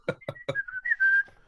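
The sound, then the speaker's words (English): A person whistles a short, wavering tune of a few sliding notes, fairly clear. A few brief voiced syllables come just before it. “the thing about whistling is the only person who enjoys whistling is the one who's whistling.”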